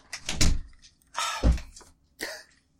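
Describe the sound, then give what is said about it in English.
A door is pushed shut: a scraping swing, a heavy solid thud, then a short latch-like knock, with no voices. “Close the door.”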